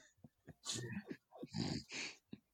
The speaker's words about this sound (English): Oh, here's your dog. Snuffling.